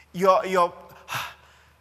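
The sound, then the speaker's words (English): A voice imitates panting for breath: a strained, voiced exhale followed by a sharp, breathy gasp, fairly loud, heard alone without surrounding talk. “And therefore, every step that you make, you want more oxygen. You're panting for oxygen.”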